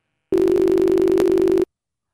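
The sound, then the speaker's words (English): A steady electronic telephone tone after the called person hung up holds one low pitch for just over a second at even loudness, then cuts off abruptly. No voices. “Oh, he hung up.”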